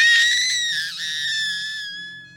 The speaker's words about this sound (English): Eventually, she did start yelling for help, which everyone up and down the shore heard.